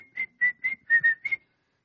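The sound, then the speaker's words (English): A person whistles a short, bouncy tune of about six clear notes in quick rhythm, fairly loud, with no talking over it. “But I walk into the place, and I like to whistle. Anybody here like to whistle?”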